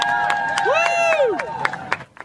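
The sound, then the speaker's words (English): A crowd cheers and whoops as a woman on a water bike rescues a kitten that fell into a Florida river from a bridge, with one rising-and-falling shout standing out over scattered clapping and excited voices, lively throughout. “Crowd's cheering, but the rescue isn't over yet because the kitten had some other ideas and tried to jump to safety.”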